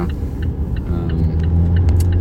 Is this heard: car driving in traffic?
yes